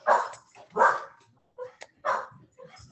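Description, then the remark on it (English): A dog barks three times in loud, sharp bursts spaced about a second apart, with a few softer yips in between. “My dog.”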